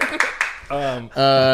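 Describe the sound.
Three sharp hand claps land in a quick, even rhythm, each a crisp slap. A loud, sustained voice follows right after.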